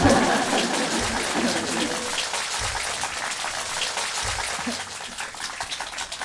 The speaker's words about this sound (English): Okay, that's it. Give me a big applause and I will disappear.